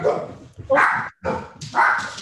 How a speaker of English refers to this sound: We have angry dogs with Liberty.